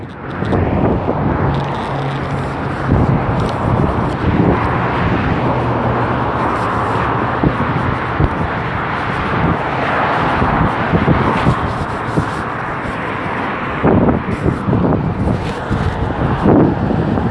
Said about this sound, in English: It's really cold over here because the beach or the ocean is like probably like 10-15 minutes away. So it's really windy and cold over here.